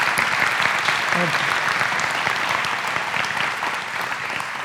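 An audience at a church service claps steadily throughout, a dense, sustained wash of many hands at an even loudness for nearly five seconds, with a brief vocal sound briefly showing through around the first second.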